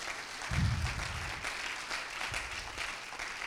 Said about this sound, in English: Come on and clap if you believe it.